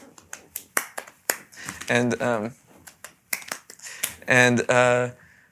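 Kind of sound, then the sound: human body sound, hand clapping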